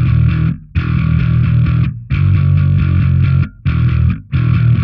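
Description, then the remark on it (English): Loud, gritty distorted bass guitar playing short repeated phrases with brief gaps, run through distortion and a Cali 76 compressor so each note hits evenly and punchy, with no talking over it. “It makes it sound like I'm playing a lot harder than I am, and this compressor is just awesome.”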